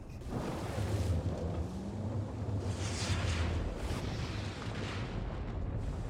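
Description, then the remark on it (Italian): A deep, continuous rumbling roar of a lava river, steady, with a broad hissing, crackling wash above a low droning hum, and no voices. “Ecco il fiume di lava.”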